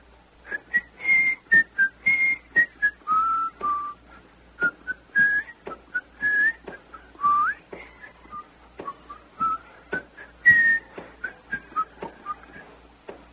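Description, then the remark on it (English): Marching band members whistling a lively, bouncy tune in hot sunlight, short quick notes, fairly loud, punctuated by sharp percussive clicks throughout, with no talking. “And they're out there in that hot sunlight whistling, you know.”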